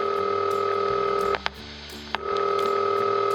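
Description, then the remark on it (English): A steady telephone dial tone hums, then cuts out as an old phone is dialed, with a pair of sharp clicks and a brief pulsing stretch before the tone returns. No one speaks. “You know, maybe I should really get a more modern phone.”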